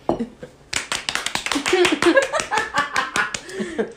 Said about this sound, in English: Cue applause.